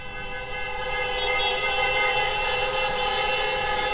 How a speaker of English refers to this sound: That is the chorus of horns that went on. I finally fell asleep at around 3:30 in the morning, and it was still going with sirens and people screaming, and it just never stopped.